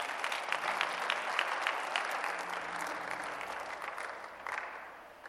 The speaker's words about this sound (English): That one too, you can clap.